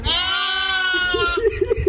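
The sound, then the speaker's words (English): A sheep lets out one loud, quavering bleat lasting about a second, followed by a string of shorter voiced sounds that may be brief talk. “Call him the sheep whisperer.”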